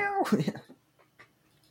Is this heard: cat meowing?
yes